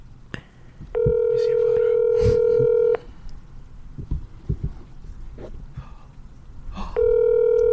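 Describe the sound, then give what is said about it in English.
An outgoing phone call to a woman sounds a loud, steady tone for about two seconds, then returns near the end, with faint murmuring and small background noises in the gap; it does not do the double ring. “That didn't even do the double ring.”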